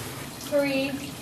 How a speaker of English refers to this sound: All right, guys, day four of the cold showers.